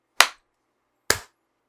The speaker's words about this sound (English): Do you want to clap real quick? We can clap. Let's clap in 3, 2, 1.